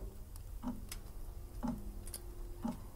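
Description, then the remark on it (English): A clock ticks slowly and steadily, about once per second, each tick soft and hollow against a faint background hum, with no voices. “I could hear the solemn tick of a clock.”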